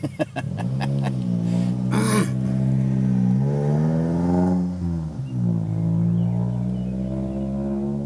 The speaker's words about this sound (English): Hold on. This guy just started his fucking lawnmower over here.